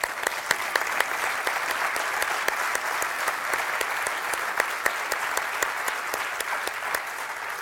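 A crowd applauds steadily for several seconds, a dense, even patter of many hands clapping at once, with a few sharper claps standing out. No one speaks over it.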